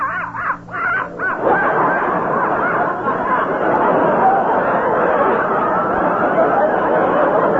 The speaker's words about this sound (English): This is the dog. This little thing? I think it's a beautiful animal, aren't you, doggie?